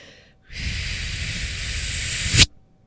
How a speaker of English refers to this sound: What you're doing is you're taking a deep breath in and then you're forcefully pushing it all out. This is definitely not my favorite blow to do, but it definitely does the trick if I'm feeling that fatigue, that heaviness, that fogginess.